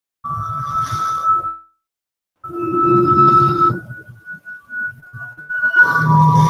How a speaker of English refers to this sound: It is a song. It's like a tune. Like old time western. About to be a shootout.